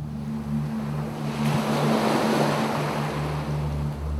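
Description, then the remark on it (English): Ocean waves rush and break on a shore, the hiss of surf swelling in the middle and easing off, with a steady low hum running underneath. No one speaks. “And the waves crashing softly and harshly against the shore.”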